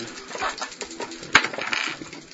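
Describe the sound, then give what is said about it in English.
Dice clatter and tumble across a hard tabletop, a quick run of light rattling clicks with one sharper knock partway through, fairly quiet, with no voices. “Shut your fucking trap and roll the dice, man.”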